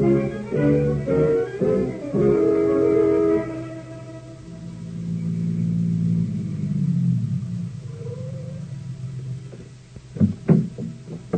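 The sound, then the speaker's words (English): A car engine rumbles, revving with a rising whine before settling into a steady low drone as it drives toward the waterfront, followed by a few sharp knocks near the end. “Only as far as my car. You can sleep in the car on the way to the waterfront.”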